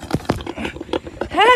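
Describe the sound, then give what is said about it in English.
A baby potbelly pig, under a year old, at a house grunts in a quick run of short, rough snorts and snuffles, ending in a brief high-pitched squeal. “People actually have, those are called potbelly pigs.”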